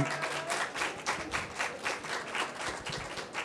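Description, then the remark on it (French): An audience applauds steadily as a person is invited up to join the show, many hands clapping in a dense, continuous wash with a slight pulsing rhythm, moderately loud and sustained throughout. “On peut l'applaudir, mesdames et messieurs, c'est...”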